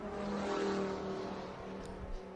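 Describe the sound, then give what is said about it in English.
A train of four or five race cars roars through the bus stop section of the track, engines droning and revving in a steady blur of overlapping whines, fairly loud and continuous for a couple of seconds. “Further back in the pack, I've got a 4-5 car train here going through the bus stop now, and they are about to get close enough to start having some fun with each other.”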